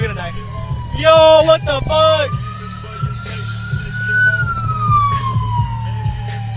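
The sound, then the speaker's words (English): An ambulance siren wails loudly through traffic, its pitch climbing and then sliding downward as it passes, over a steady low engine rumble and a brief burst of warbling tones near the start. “This is an SC. The ambulance. Ambulance. Ambulance.”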